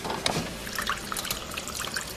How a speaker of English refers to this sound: There's a water fountain in this posh house.